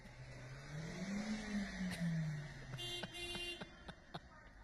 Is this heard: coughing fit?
no